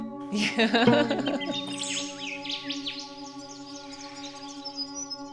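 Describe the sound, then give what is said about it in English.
A cockatoo right outside gives a loud, harsh, raspy screech in the first second, followed by a run of quieter, higher chirps and squeaks from other birds over a steady hum. “In fact, actually, I was sure there was a cockatoo right outside.”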